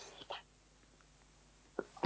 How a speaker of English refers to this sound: Excuse me, I've got to sneeze in a second.